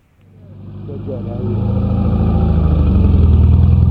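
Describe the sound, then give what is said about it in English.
Five compact cars with headlights on descend into a valley, their engines a low, droning rumble that swells steadily from silence to a loud roar over a few seconds. “Suddenly, we see a stream of headlights descend into the valley behind us. The rest of the goons have arrived. It's five compact cars.”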